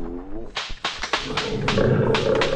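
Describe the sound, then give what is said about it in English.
A Bengal tiger named Prince Rajput roars in several harsh, rasping bursts, then settles into a sustained, rumbling growl that fills the rest of the moment. “Tiger, I'm not afraid of you, tiger.”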